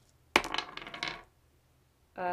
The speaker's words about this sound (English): Let's get some dice here.